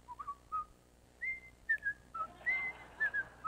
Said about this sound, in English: If you're ever struggling, just try to whistle.